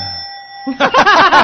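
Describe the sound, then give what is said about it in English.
A single bell-like ding, rung by a person giving themself the bell, rings out with a steady, bright, lingering tone for about half a second, then lively voices and laughter break in and carry on. “I like how you gave yourself the bell.”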